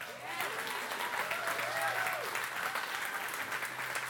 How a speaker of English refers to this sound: Clap.